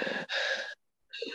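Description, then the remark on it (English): A person imitates the labored, wheezing breathing of a sick baby: two raspy, strained breaths in quick succession, a brief silence, then a third wheezy breath starting, fairly loud. “He was so sick, breathing like this.”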